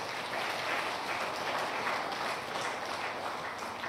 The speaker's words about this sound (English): But can we just give a clap offering to the Lord for these people?